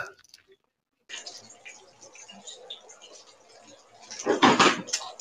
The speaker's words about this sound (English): It sounds like she's cooking bacon. Is that bacon you're cooking? Yeah, and breaking everything in the refrigerator. Definitely getting breakfast done.